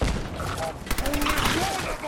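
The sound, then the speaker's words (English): Rapid bursts of video game gunfire crackle continuously, dense and loud, with overlapping shots and faint tonal game sounds beneath, no pauses between volleys. “Where else am I getting shot from?”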